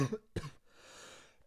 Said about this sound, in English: And he's also getting over sickness right now, so he's coughing a little bit too.